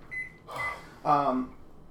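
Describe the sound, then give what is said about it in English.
A microwave oven, used to melt chocolate, gives a short, steady electronic beep, followed by a couple of louder bursts of voice-like sound as someone talks over the appliance. “Next, you're going to discover that I don't know how to use a microwave.”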